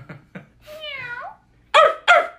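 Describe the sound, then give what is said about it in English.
A person imitates a hyper, excited dog with a few short yips, a drawn-out whiny tone, then two loud, sharp barks. “That's a very hyper dog.”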